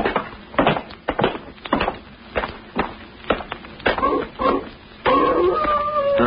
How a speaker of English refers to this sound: Huh? What's that? Sounds like a wolf. That ain't what the wolves sound like down in California. You're thinking of the Hollywood kind. This is the real McCoy. When you hear a dog howl like that, to say he's sitting on somebody's grave.